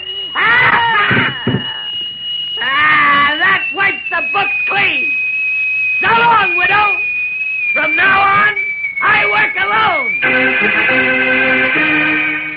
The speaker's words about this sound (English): But his voice still echoes throughout the building. Echoes in the next room, where unseen, Batman lies sprawled on the floor.